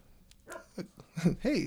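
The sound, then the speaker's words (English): A female dog barks four or five times in quick, uneven succession, the short yelping barks growing louder toward the end, with no one talking over them. “we summoned a dog with our powers.”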